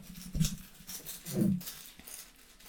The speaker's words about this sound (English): Dude, she's a happy dog. She's wild. She is wild.